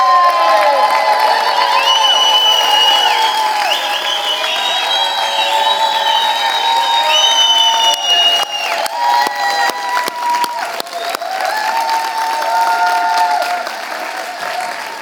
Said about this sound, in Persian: پس اگر ایمان دارید، به اندازه ایمانتون شروع کنید هلهله کردن و دست زدن برای آزادی ایران.